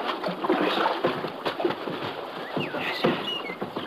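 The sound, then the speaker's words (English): Continuous splashing and sloshing of water around a small boat on a river as it pushes toward the riverbank near a campfire, with scattered sharper splashes and a few faint bird chirps in the background. “Let's pull in the shore here, Romero.”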